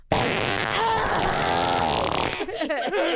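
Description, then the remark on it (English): A long, loud, buzzy fart sound lasting about two seconds, sputtering with a rough rasp, followed by a short burst of someone speaking. “No more farts.”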